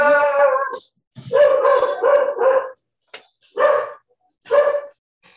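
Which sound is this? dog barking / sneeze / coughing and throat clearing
dog barking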